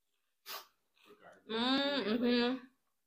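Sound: sneeze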